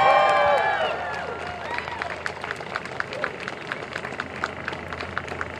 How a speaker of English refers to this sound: Great sign. I reckon that sign needs a round of applause.